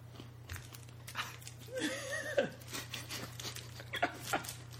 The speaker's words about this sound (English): You picked the perfect opportune time to bite something. I'm sorry, I can't help that Cliff Bars are so crunchy.